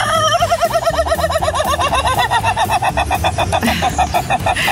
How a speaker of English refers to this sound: Yeah, it is an animal. It is the sound of a rooster's crow. It's on a farm, and its owners actually affectionately call it the laughing rooster because it kind of sounds like it's doing exactly that, isn't it?